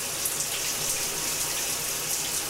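Shower water runs in a steady, continuous hiss and patter, even in loudness throughout, with no voices.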